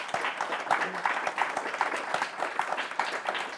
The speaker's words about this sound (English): How about a round of applause for our great panelists?